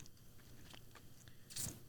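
A single wet bite into soft, mushy fruit lands near the end, a brief squelchy burst after quieter faint mouth noises, without crunch.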